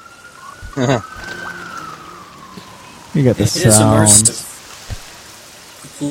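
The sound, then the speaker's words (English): A steady, soft hiss of recorded rainfall in an urban city sound installation by Nish Mip, with a faint wailing ambulance siren drifting in the background and people talking over the rain. “The ambulance, the people talking, the rain.”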